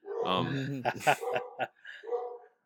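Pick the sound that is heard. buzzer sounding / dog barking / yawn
dog barking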